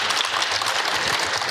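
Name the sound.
round of applause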